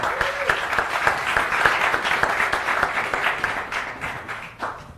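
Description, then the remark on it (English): An audience breaks into steady applause for the panelists of a discussion on radio, a dense patter of many hands clapping at once that holds strong for several seconds before gradually thinning out toward the end. “So let's just start by giving the panelists a round of applause.”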